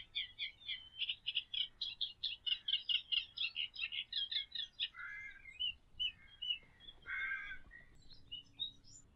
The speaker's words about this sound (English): Black cap singing there.